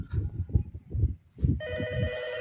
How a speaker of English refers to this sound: And then the fucking phone. Stupid phone.